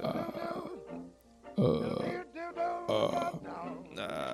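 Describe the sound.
A voice demonstrates creaky voice phonation, making low, rough, crackling creaky sounds in several short bursts, like drawn-out vocal fry, with brief pauses between them and a gravelly, grunt-like texture throughout.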